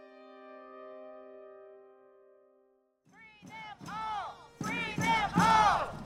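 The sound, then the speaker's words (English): A steady harmonic musical tone fades out, then a protest crowd at the DeKalb County Jail chants and shouts in loud, rhythmic bursts of many voices that build in intensity, protesting the arrest of three Atlanta Solidarity Fund administrators. “At the DeKalb County Jail yesterday, a crowd gathered to protest the arrest of three administrators of the Atlanta Solidarity Fund.”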